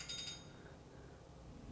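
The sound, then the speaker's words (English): A mobile phone's ringtone sounds briefly: a few quick, high-pitched electronic pulses at the start, fairly faint, then fading into a low, steady background hum with no voices. “Your phone's ringing.”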